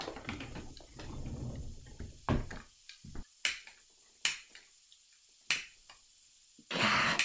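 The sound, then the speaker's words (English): A grill lighter, used to light a stove to boil a pot, clicks repeatedly without catching: several sharp clicks spaced about a second apart against a quiet background, then a short burst of hissy noise at the end. “Well, I'll get the lighter then, the grill lighter.”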